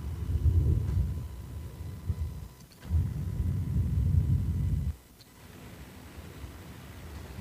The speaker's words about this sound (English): A bit of thunder.